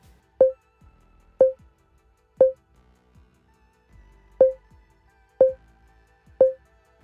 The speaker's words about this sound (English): Cue your character's audio track and press play at the exact same time as your partner. Counting down from 3 can help to synchronize your episode. You'll then hear a series of beeps like this.